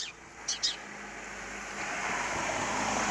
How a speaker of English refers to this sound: That's one thing David Attenborough doesn't have to worry about. His cars passing when he's trying to do his wildlife stuff.